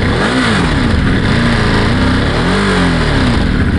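An engine is started by turning the key to on and revs loudly, its pitch climbing and dropping in several quick surges over a steady rumbling idle, with no voices.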